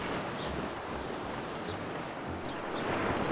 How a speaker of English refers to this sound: Oh, peaceful, right? For many of us, we associate these sounds with a happy day at the beach.